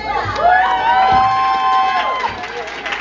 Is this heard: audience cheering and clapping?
yes